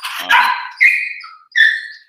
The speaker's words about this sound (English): Hold on. Those dogs fighting? No, just barking. Oh.